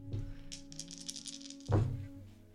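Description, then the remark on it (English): Dice being rolled for a skill check in a game rattle briskly for over a second in a rapid clicking flurry, then land with a heavier clatter that fades out. A low steady hum sits underneath, and no one speaks. “Still it's going to be a tough check. Roll.”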